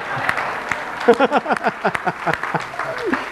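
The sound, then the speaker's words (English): Scattered audience clapping, moderately loud, with people talking and calling out over the applause throughout. “I don't know whether to clap on that or not.”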